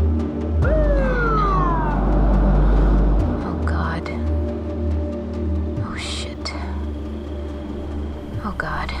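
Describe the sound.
A police car siren in Slab City gives a brief downward wail over a heavy engine rumble, with faint murmured voices and scattered clicks in the background.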